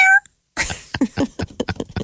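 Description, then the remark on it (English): A short, high-pitched meow from a cat named Murray sounds at the very start, followed by a brief pause and then a person talking. “If they were to make a wax statue of you, would Murray be there, your cat?”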